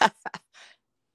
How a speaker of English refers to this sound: Oh, sorry. It's all right. I keep blowing my nose. I don't know. It can't be allergies because it's really rainy and cold here.